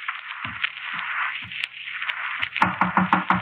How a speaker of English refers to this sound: You calling me? Didn't you knock at this door? Are you crazy? Well, I thought I heard somebody.